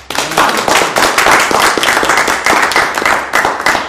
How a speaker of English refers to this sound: Well, I'm just glad everyone clapped. I'm very pleased that, well, not everyone actually, but most people clapped.